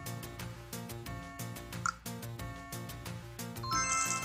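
A chiptune-style Zelda video game melody plays from a small phone speaker in the Song Pop game, with a quick bright chime near the middle and a glittering coin-like jingle rising at the end. No one speaks.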